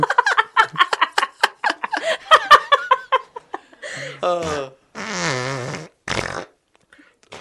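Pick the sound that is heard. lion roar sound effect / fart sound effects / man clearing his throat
fart sound effects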